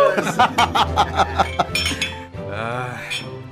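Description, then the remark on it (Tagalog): Glasses clink together in a toast, a quick run of bright, ringing taps over a low hum, followed by a short stretch of voices chuckling. “Cheers!”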